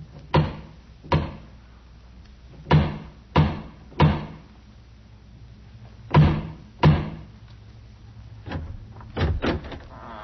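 Heavy, resonant knocks on the massive wooden door of the House of Usher, struck in uneven clusters of two or three with pauses between. The thuds are solid, with no voices.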